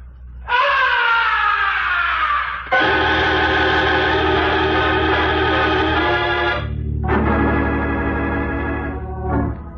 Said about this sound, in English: From way up in the heights of the stage, the opera house was pierced with a blood-curdling scream. That was no ordinary scream. It was the scream of death.